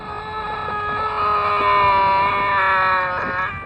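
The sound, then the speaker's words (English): A strange, drawn-out scream holds a steady, buzzy pitch with slight wavers for nearly four seconds, loud, with nothing else around it. “Here's a weird scream.”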